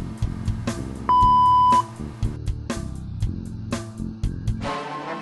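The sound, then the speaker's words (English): A single steady, loud electronic beep from an answering machine holds one pitch for just under a second, over a busy musical backdrop of drums and synths. “Please leave your message after the beep.”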